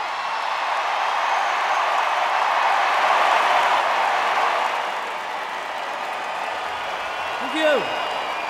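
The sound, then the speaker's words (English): A concert crowd on the last night of a tour cheers and applauds the band in a steady, loud roar of clapping and shouts that holds for several seconds, easing slightly toward the end, with a brief whoop near the close. “All right, the biggest cheer you can give.”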